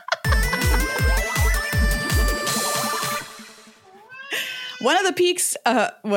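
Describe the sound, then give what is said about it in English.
A pet cat at home meows several times in quick succession, fairly loud, with rising-and-falling cries. The meows come right after a short burst of upbeat music with a thumping beat. “One of the perks of recording from home is that we get to hear Molly on the broadcast, Megan's cat”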